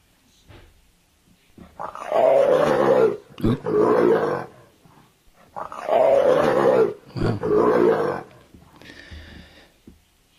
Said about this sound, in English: Leopard.